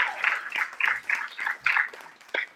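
An audience breaks into a round of applause, a dense patter of many hands clapping at once that swells in uneven pulses for a couple of seconds, with no voices over it.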